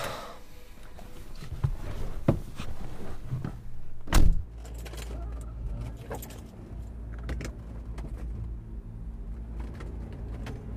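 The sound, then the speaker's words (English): Someone climbs into a car with a few rustling clicks and jingles, then a car door thumps shut loudly while a low engine hum rumbles steadily underneath. “Eels got back in the car.”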